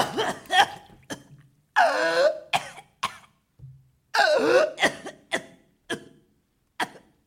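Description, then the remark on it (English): A person coughs and sputters up water in a harsh series of bursts, a couple of them long and gurgling with strained breaths, the rest short hacking coughs separated by brief pauses. “Cough it out.”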